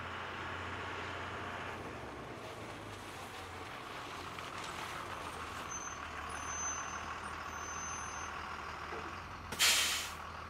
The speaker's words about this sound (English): The bus stops.